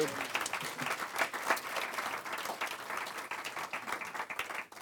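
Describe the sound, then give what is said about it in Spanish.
An audience applauds the Lord Jesus Christ steadily, a dense, continuous patter of many hands clapping at once, sustained at an even level for several seconds before tapering slightly at the end. “Si le damos un aplauso a nuestro Señor Jesucristo, hermanos.”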